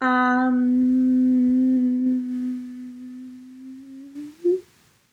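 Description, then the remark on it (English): A person hums a single long, steady note for about four seconds, softening gradually before a brief upward lilt at the end, with no talking. “I'm just realizing I was humming.”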